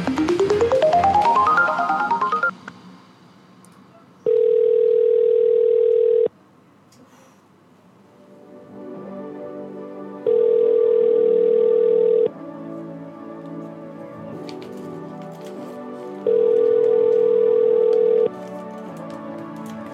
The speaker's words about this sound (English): I know why the ringtone's not working, actually. I'll fix that for next time. It's because I've been moving all my data around, that's what it is